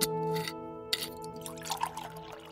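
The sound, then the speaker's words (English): Cognac splashes and trickles into a glass in a short pour, with a few gurgles and clinks, over a soft steady musical hum in the background. “I poured myself some hen and got comfortable.”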